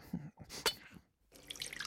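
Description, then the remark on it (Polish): A few short clunks and splashes, then a steady, hissing rush of water starts and keeps flowing, fairly loud, like a kitchen tap opened full. “Leci! O, trochę za dużo chyba. Nie szkodzi. Może zaleje ogród i dom”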